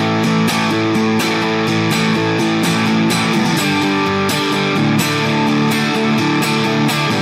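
Distorted electric guitar chords hammered out with heavy downstrokes in a steady driving rhythm, loud, each strum a sharp percussive hit ringing into the next, no voices.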